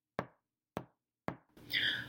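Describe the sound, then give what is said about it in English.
Three sharp, evenly spaced, solid knocks on the door of a barn house, followed right after by a brief squeaky, whining sound. “and I heard off the door of the barn house three knocks.”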